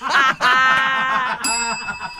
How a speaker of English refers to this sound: I think that might be the first time I've rung the bell today, which at 17 minutes past 8 is a rarity.